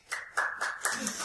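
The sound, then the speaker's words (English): Brief, sparse audience applause: a handful of scattered claps in an uneven rhythm at moderate loudness, with a faint murmur of crowd voices underneath. “So, applaud if you think the cancer treatment being tested on mice is the fiction.”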